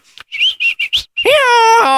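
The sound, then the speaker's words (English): Someone mimics a whistle pig's whistle: four quick, high chirps followed by a long, strained, squealing whistle, fairly loud, with no talking. “Story of the whistle pig. What's that sound like?”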